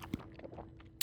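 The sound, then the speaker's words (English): Soft, wet chewing of a piece of cantaloupe, with squishy mouth sounds and a sharper smack at the end; quiet, no talking. “That's a nice piece of cantaloupe.”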